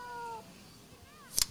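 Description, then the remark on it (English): A cat meows twice: a drawn-out, steady meow followed by a shorter, wavering one, fairly soft, ending with a brief sharp rustle or clatter. “Is that you, Claudikins? Claude? Here, kitty, kitty, kitty, kitty, kitty.”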